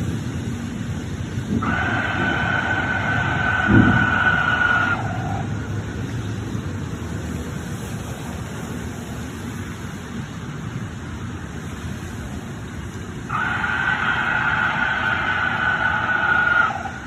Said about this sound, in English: And the thunderstorm going on.